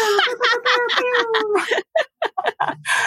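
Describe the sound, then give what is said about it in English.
A voice imitates a rap air horn: one long, wavering, high blaring tone, then a quick run of short choppy honks, loud and with no other talk. “Instant rap air horn.”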